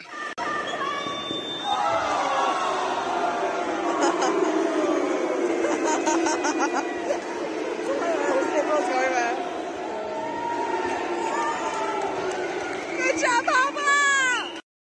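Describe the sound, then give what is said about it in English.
A crowd at the State Youth Games boos loudly and steadily for about fifteen seconds, a sustained low droning jeer mixed with shouting voices and chatter, with a burst of high squealing near the end. “but we're going to show you a clip which may not straight away make you think united, because everybody's booing.”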